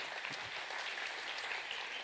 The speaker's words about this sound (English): Somebody clap like you're going to declare the word of God over your circumstances.